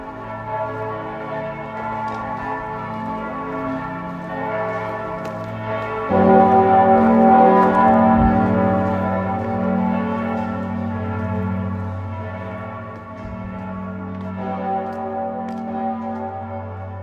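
Church bells ring out in Passau in a rich, sustained peal, their overlapping tones swelling louder partway through and humming on with a long resonant decay, no voices present.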